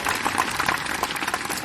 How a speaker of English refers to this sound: You know what? After I mention each one, let's just applaud and praise the Lord for each one.